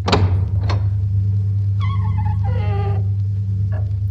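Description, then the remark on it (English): Barn doors are shoved open: two heavy thunks followed by a long, wavering hinge creak, all over a steady low rumble, with one faint knock at the end. “Lucas motions for her to follow him as he pushes open the barn doors.”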